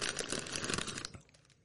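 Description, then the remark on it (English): A snack bag is torn open at the side with a sustained, crinkly plastic rip lasting about a second, followed by a few softer rustles and crackles as it settles. No voices are heard. “You may have to, like, tear the side there.”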